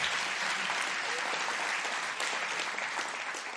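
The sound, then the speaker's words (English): An audience applauds steadily, a dense, even wash of many hands clapping at once with no pauses, holding a fairly loud, constant level for the whole stretch. “You can clap and appreciate the Lord as well.”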